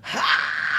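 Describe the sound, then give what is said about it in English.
A voice imitates a rock singer's scream: a short, raspy, strained cry that rises sharply and holds a high, gritty pitch for under a second, loud and on its own. “That scream that he does is he was heavily influenced by ….”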